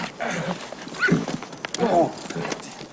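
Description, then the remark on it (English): A horse whinnies loudly, its harmonic neighs rising and falling, while hooves clop unevenly underneath on a hard surface. “This horse, them old hogs over there.”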